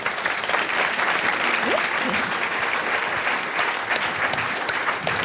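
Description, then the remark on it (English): A standing-room-only crowd applauds the evening program's sponsors, the Daniel K. Inouye Institute and Hawaii Public Radio, a dense wash of many hands clapping at an even loudness for several seconds, with a faint voice or two barely audible underneath. “So a round of applause for them, please.”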